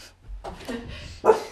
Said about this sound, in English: Sorry, dog. Our podcast mascot is guarding the house.